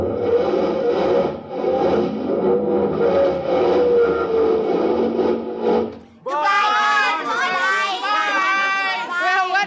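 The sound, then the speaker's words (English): A car engine labors with a steady, strained drone for about six seconds because the driver has forgotten to take the brake off, then cuts off abruptly as several voices start talking loudly over each other. “I forgot to take the brake off.”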